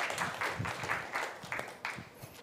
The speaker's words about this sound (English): So would you please give her a round of applause to encourage her as she comes to read the scripture for us.